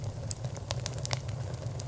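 A fire crackles steadily in an office fireplace as photos burn, with sharp pops and snaps scattered over a low, constant rumble of burning. Moderately loud, with no voices.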